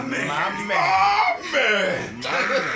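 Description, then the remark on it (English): A man screams loudly in three strained, drawn-out bursts with brief breaks between them, his voice harsh and rising, in the movie trailer for Aquaman. “When did he start screaming, though? That scream.”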